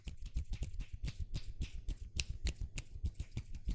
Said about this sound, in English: But you know, that's one of my favorite sounds. For everyone listening here, this is my one hand clapping. I love doing this.